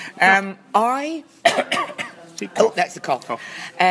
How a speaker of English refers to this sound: That's just the same cough that you always have. No, it's an irritating tickle. It's a nervous tickle. No, it is wetter.